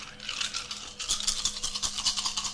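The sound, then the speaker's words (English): A handful of ten dice rattle and clatter for a couple of seconds in a roll at difficulty 6, a dense stream of quick, bright clicks that swell and ebb, with no voices. “I can't tell you how many 3s I've rolled tonight.”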